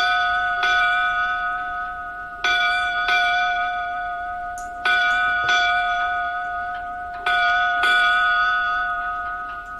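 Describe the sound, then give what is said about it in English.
A ship's bell rings eight bells in evenly spaced pairs of clear, resonant strikes, each tone lingering and fading before the next pair. No voices, just the bell, loud. “Eight bells”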